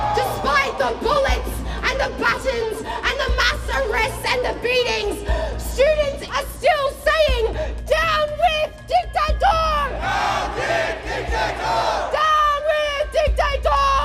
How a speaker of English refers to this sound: As the Melbourne crowd chants loudly in unison, I notice something strange.